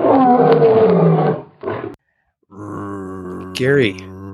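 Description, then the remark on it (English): A person lets out a loud, raspy roar imitating a lion, followed by a second shorter growl, then a sustained vocal drone that rises into a wavering howl near the end. “the one time I'm going to let you make a lion noise.”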